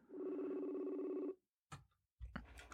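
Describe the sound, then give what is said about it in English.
A steady electronic phone ringback tone drones for over a second as a caller on line one is put through, then cuts off, followed by brief clicks and rustling handling noises on the line. “No, it's just ringing sounds.”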